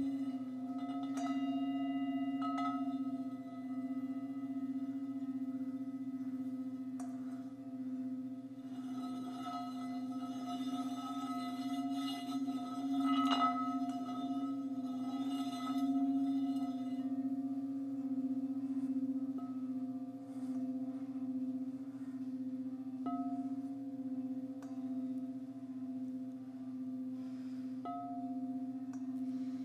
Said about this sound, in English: So as you hear the dissonance in these bells, I invite you to listen for what resonates with you.